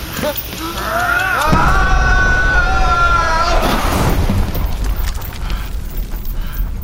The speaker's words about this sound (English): Behold! It's dynamite! The blast will incinerate the room. I'd estimate we have 10 seconds until it detonates.